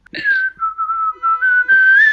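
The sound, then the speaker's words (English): A person whistles a short melodic theme-song tune, the clear pure tone gliding between notes in several connected phrases with brief breaths between them. “I just whistled our theme song.”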